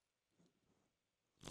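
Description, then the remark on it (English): A soft, wet gulp of a Rockstar energy drink, a brief swallowing sound, then an abrupt loud crackling burst right at the end. “As I drink a Rockstar, if you're watching this.”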